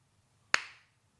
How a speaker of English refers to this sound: Everyone in Applebee's simultaneously starts a slow clap.